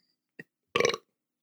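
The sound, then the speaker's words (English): A brief hiccup-like catch is followed by a loud, rumbling burp after drinking birch beer, lasting about a quarter second, with no talking around it. “Get that birch beer burps.”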